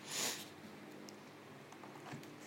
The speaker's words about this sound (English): Sorry, I keep sniffling, y'all. I got a fucking cold.